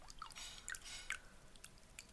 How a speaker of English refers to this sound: I love the splashes. The splashes is what I'm here for.